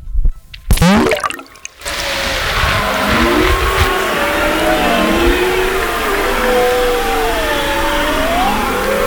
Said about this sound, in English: You hear bearded seals and beluga whales and a couple of walruses. They are all in orchestra together, you know. It is fascinating. And so they are looking for food and stuff like that. And it's under the water.